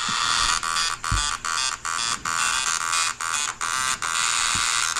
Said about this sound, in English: It's the old ribbon style printer. Dot Matrix, baby. It sure is.